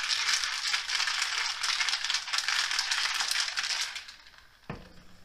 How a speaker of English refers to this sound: All right, gotta shake her up. Shake well to get that watermelon in there.